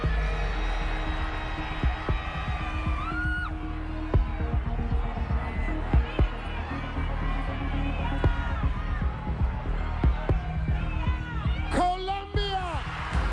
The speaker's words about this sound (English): And for what seemed like a long time, it was maybe 2 minutes or something, the crowd is cheering, she's crying, they put a tiara on her head, it's all exultant.